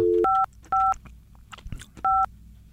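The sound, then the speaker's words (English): Touch-tone phone dialing to place a call: four loud, clear dual-tone beeps in an uneven sequence, each lasting a fraction of a second, with faint rustling in the gaps and no talking. “let's give Caleb a call”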